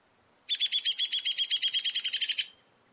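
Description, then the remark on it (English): A rapid descending whinny of sharp, high-pitched notes from a downy woodpecker, about fifteen evenly spaced chirps over two seconds, slowing and fading slightly toward the end, clear and alone. “Now that we've listened to downy woodpeckers, let's play both woodpeckers and see if you can hear the differences. First is downy.”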